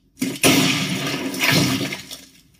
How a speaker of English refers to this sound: That last sound was the sound of the president shooting himself in the head and his gooey bug brains hitting the desktop, if you're wondering.